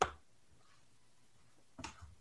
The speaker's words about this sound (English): As it was happening, I'm like, should I mute myself? But like, you can hardly think while you're sneezing.